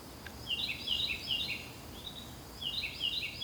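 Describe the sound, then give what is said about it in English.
A bird repeats shrill, warbling phrases that rise and fall like a car alarm, in two separate bursts, at a house in a city neighborhood of Columbus, Ohio, over a low, steady background rumble. No one speaks. “Yet the birds do sound a lot like car alarms.”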